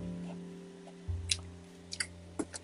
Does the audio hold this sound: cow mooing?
no